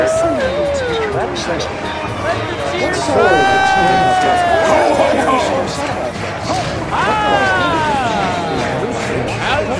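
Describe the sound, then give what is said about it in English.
In a film scene, a large crowd roars steadily with applause lasting about 45 seconds, while loud voices rise together in chanting shouts that swell twice over the continuous clapping noise. “They're still chanting. That applause goes on for like 45 seconds straight.”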